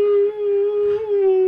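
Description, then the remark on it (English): A loud stomach growl drawn out into one long, steady whining tone, almost like a howl or moan, lasting over a second with no one speaking. “Oh, sorry. That was... my stomach.”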